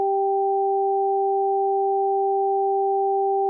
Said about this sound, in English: The pattern I devised consisted of two tones that were spaced an octave apart and alternated repeatedly. The right ear received the sequence high tone, low tone, high tone